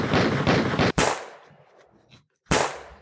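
A rapid burst of loud gunshot effects, three or four sharp blasts close together, then a brief decaying echo, a short silence, and one more sharp shot. No voices.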